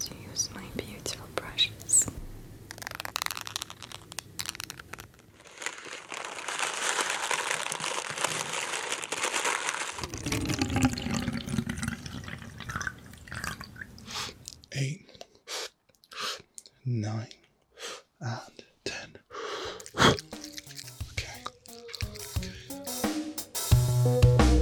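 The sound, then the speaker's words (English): ASMR sounds: breathy whispering mixed with soft crinkling, crackly rustles and small clicks, all quiet, with a steady hissy stretch in the middle and busier tapping bursts toward the end. “the quietest trend on YouTube, ASMR, which sounds a little something like this”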